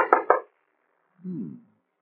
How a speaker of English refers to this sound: Rather a bold knock for a man who's hiding. Open the door.